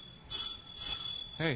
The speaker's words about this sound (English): Hey, doorbell's ringing. I know the doorbell's ringing.